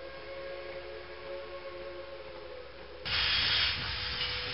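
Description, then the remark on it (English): A steam train's whistle sounds a sustained tone for a few seconds, then a loud burst of steam hiss rushes in and carries on to the end. No one speaks. “The first orphan train left New York bound for Michigan in 1854.”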